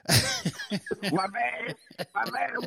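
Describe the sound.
A single sharp cough bursts out at the very start, followed by a voice talking steadily for the rest of the moment.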